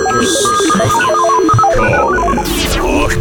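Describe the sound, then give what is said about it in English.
An outgoing Skype call rings as a guest is called for a reverse call-in: a loud electronic melody of quick stepping beeps repeats over a steady tonal hum, with no one talking over it. “so I got him on for a reverse call-in.”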